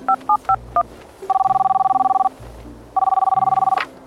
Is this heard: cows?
no